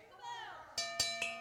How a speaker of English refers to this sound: And the bell is rung.